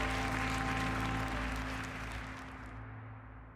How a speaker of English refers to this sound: The crowd cheers Edwin's call to action and gets down to business.